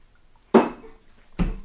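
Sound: glasses clinking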